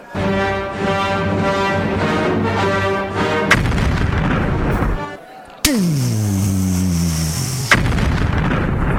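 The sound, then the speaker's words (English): Loud movie-trailer effects: heavy booming explosions and gunfire crash in over dramatic music, with a sharp downward-sweeping tone and a few abrupt hits punctuating the noise. “And those sound effects brought to you by a movie trailer that you probably saw.”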